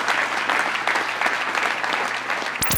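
Steady, dense applause from an audience on the Adam Ritz Show, a continuous wash of many hands clapping at even loudness, cut off abruptly at the end by a brief electronic swoosh.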